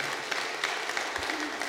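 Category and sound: crowd, audience applauding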